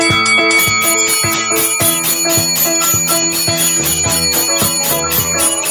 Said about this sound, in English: Ring the bell. Ring the bell for the Sixers.